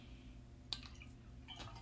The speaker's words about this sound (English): Sorry, I'd take a sippy of water.